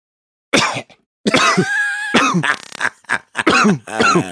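A man coughs in a loud fit: a first harsh burst, a long strained, throaty cough, then a rapid string of shorter hacking coughs. No talking.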